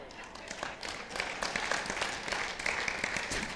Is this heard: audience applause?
yes